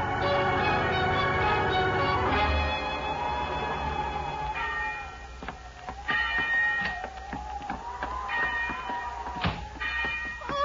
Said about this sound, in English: My lady. She's been ringing the bell.